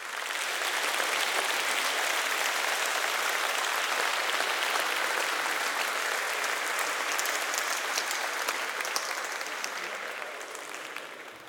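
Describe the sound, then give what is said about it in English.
A couple of recorded audience-clapping sounds, processed with effects for a song intro: a large audience claps steadily in a dense, continuous wash of applause that holds level for most of the stretch, then begins to taper off slightly at the end. No one speaks. “I found a couple of different sounds of audiences clapping and just affected them appropriately to fit in here.”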